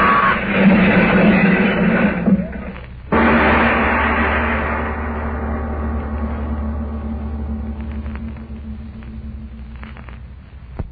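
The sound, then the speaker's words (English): A car's brakes give a steady, harsh roar for a few seconds as it fails to stop, then it hits a wall in one loud crash that slowly fades into a long, rumbling tail. No voices. “It's a wall. Brakes. It's a wall. I can't stop.”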